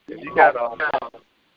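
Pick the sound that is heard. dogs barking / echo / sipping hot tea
echo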